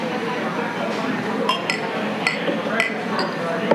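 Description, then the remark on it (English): Several bright clinks of beer glasses, including a Lindeblues, ring out in quick succession in a toast over a bed of low murmuring voices. “Cheers, everybody.”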